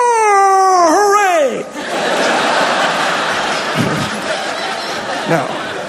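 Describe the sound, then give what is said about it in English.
A loud cat yowl rises and wavers for about a second and a half before sliding downward into a strained groan, followed by a hissy, noisy background. “I don't even know where it comes from in the cat's body. It's like from like the depths of hell.”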